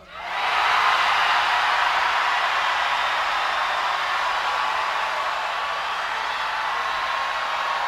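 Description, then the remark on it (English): An audience screams, moans and groans all at once on cue, a dense, loud wall of voices that swells up quickly and holds steady for about seven seconds. “We need a lot of screaming and moaning and groaning.”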